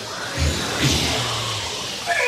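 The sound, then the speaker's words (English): An audience vocally imitates a rocket ship, making a loud, sustained roaring whoosh with low rumbling hums underneath that runs steadily for a couple of seconds. “How about, what would a rocket ship sound like?”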